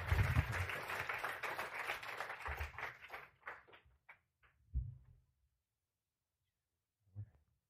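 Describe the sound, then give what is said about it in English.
An audience applauds steadily for about three seconds to welcome a speaker, the clapping then thinning to a few scattered claps before fading out, with a couple of dull thumps and near silence afterward. “So let's open our hearts as we welcome him with a round of applause to come and share with us.”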